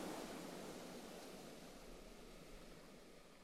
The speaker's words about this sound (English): The splash of water on the shore as waves crash up against rocks and droplets cascade back to foam.